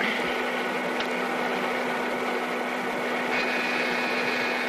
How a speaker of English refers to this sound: I guess I couldn't hear it because of the vacuum cleaner.